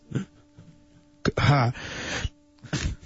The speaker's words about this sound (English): Yeah, who sneezed?